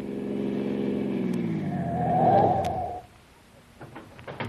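A car coming fast from behind roars loudly, its pitch sliding down as it slows and pulls up, then cuts off abruptly, followed by a few faint clicks and knocks.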